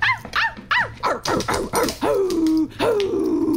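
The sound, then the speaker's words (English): Barking sound effects: a quick run of about eight loud barks, each pitched differently from high to low, ending in two longer drawn-out yelping barks that slide downward. “It just barks, but I can do different pitches.”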